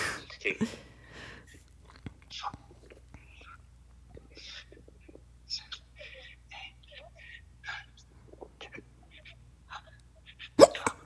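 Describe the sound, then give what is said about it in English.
Two sharp hiccups, one near the start and one at the very end, with soft whispering and quiet breathy sounds filling the stretch between them. “Next hiccup.”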